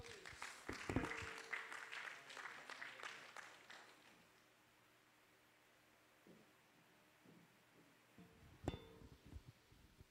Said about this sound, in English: He's coming up. Let's receive him with an amen and a hand clap.